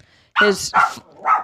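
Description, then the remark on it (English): A Chihuahua named Soup gives three quick, high-pitched yaps in close succession, loud, with brief pauses between them. “He's just a Chihuahua, so yeah, he's crazy.”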